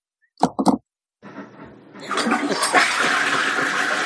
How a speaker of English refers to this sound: Go flush your toilet and come back and tell us which direction it runs in.